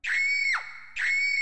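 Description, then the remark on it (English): A voice imitates a frightened woman's scream: two loud, shrill, high-pitched shrieks in quick succession, each held briefly before its pitch drops off. “So she starts screaming”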